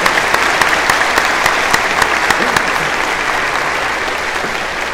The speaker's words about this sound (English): Let's give him a hand clap since that door is open.